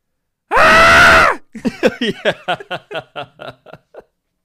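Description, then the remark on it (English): A loud, shrill screech held for about a second, followed by a rapid burst of choppy, cackling squawks that trail off, the manic call of a cartoon bird creature. “Like this little manic scream.”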